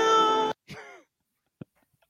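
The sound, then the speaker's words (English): A person imitates a cat's meow: a loud, steady, nasal tone followed by a shorter call that slides downward in pitch, then a faint tap in the quiet. “What's the more convincing cat?”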